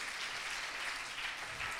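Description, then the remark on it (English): An audience claps their hands for the Lord in steady, dense applause, a continuous wash of many overlapping claps at an even, moderate level with no voices standing out. “Let's give the Lord a big hand clap tonight.”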